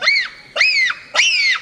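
Three loud, high-pitched bonobo screeches in quick succession, each a shrill arching call lasting about half a second, with no talking.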